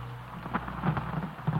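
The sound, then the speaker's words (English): Steady pouring rain fills the scene with a dense, even hiss, a low rumble underneath and a few heavier splashes breaking through, no voices present. “That terrible blind mask that saw me clearly even through the dark and pouring rain.”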